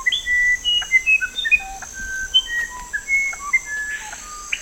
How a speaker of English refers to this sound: And there's diversity in sound, too, from the wide-ranging whistles of the screaming piha to the otherworldly melodies of the musician wren.